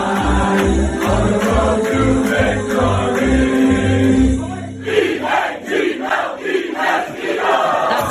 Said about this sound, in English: We sang the fight song five times.